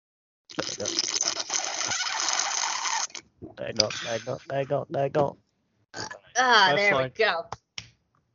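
Someone drinking water: a long, loud, noisy slurp, then a string of uneven throaty gulps and grunting swallows with short pauses between them.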